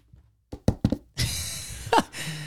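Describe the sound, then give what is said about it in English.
Three quick, sharp knocks on wood, fairly loud, followed by a sustained hissing burst of noise with a brief swell near the end. “Let's knock on wood if you're with me.”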